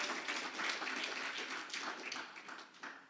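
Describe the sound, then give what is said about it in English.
A church audience applauds during a service with dense, steady clapping that holds at an even level for about three seconds, thinning slightly toward the end. No voices stand out. “Round by applause, yes?”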